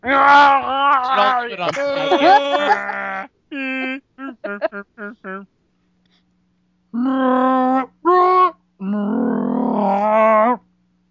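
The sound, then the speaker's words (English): A person imitates a Wookiee roar with loud, throaty, warbling groans and moans in several bursts, including a run of short rapid yelps, then two long drawn-out growling wails after a brief pause. “No one's going to do a Wookiee Roar?”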